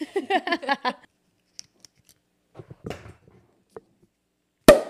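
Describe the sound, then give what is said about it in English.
A cork is worked out of a bottle of Veuve Clicquot that had been laid on its side so the cork was moist: a quick run of rhythmic, squeaky creaks, some faint ticks and scrapes, then one loud, sharp pop as it comes free. “I had it laid on its side for a while, so the cork was nice and moist.”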